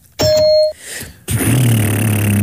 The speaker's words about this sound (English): to signify the 20 seconds that we each have, you're going to hear a ding, 20 seconds of silence.